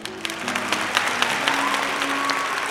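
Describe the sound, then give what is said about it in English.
A crowd at the Cottage Rest Inn applauds a bard, clapping steadily: a dense wash of many hands with sharp individual claps poking through, while faint sustained tones hum underneath. “What a splendid crowd y'all have been.”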